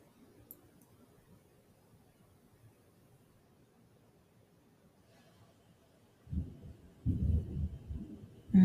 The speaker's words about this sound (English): You hear the thunder, the lightning here. It's confirmation. I love how the earth just gives all confirmation.